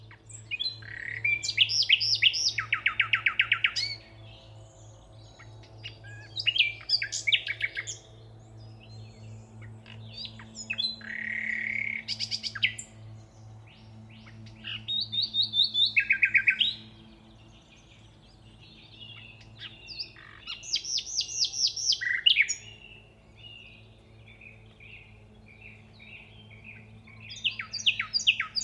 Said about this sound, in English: So that was The Nightingale, recorded by Bob Ashington.